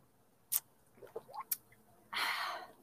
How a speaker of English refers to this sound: this is real tea, like real, like I'm sipping for this.